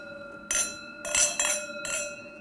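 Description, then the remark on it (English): Wine glasses clink together in a toast at Luca Restaurant, several bright ringing taps in quick succession with shimmering high tones lingering between them, with no talking. “And look forward to sharing some more bottles with you guys again soon. Here. Cheers. Cheers. Cheers.”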